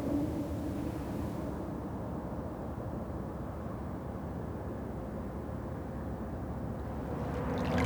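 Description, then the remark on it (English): River water flows in a steady, unbroken rush with a deep, rumbling low end and a softer hiss above, holding an even loudness throughout with no voices. “The sound of the water is so soothing.”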